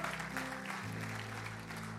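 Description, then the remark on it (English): A church audience claps steadily for six people who raised their hands, a dense wash of many hands filling the room, with a low sustained tone humming beneath the applause throughout. “We can clap for that.”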